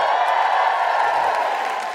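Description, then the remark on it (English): A live audience applauds and cheers for a stand-up comedian, a dense, steady wash of clapping at full volume that eases off only slightly toward the end. “Big round of applause for the wonderful Alison Spittle.”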